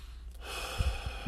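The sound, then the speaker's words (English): A soft, airy exhale rushes out steadily for about a second, with a few faint low thumps toward the end and no talking. “We're exhaling.”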